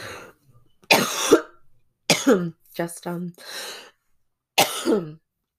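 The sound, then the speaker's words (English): Several harsh coughs come in separate bursts with short pauses between them, mixed with raspy throat clearing and a breathy exhale, loud with no talking. “Just in thinking that maybe I could, jeez, of course now I'm gonna cough this much.”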